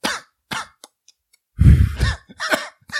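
Two short, sharp coughs, a brief pause, then a louder, harsher run of raspy, throaty coughing with some throat clearing. No one speaks.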